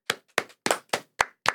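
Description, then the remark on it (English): Six crisp hand claps in a studio, in a steady, fairly quick rhythm, each a sharp bright smack that dies away fast, with no voices in between. “Okay, we'll clap for you in the studio.”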